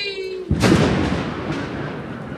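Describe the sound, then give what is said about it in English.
A sustained tone cuts off, then a loud thunder crack bursts out as Ariel vanishes, rolling into a long, rumbling decay, with a second softer swell about a second later. “Ariel vanishes with the thunder, and the shapes return, dancing and humming, mocking the hungry castaways.”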